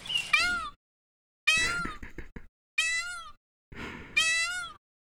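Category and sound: bird, peacock call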